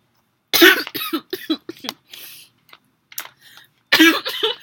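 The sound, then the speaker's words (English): A person coughs while laughing in a few loud bursts, with a harsh fit at the start, a breathy pause, then another strong cough near the end; no speech, only breaths and throat noise between. “I'm coughing and laughing because I was about to say, call me the new Anastasia Steele”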